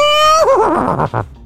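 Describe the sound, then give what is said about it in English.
A single loud horse whinny: a high, steady cry that breaks into a shaky, descending trill and fades within about a second and a half, with no talking. “Now, as a horse, how do you feel about those?”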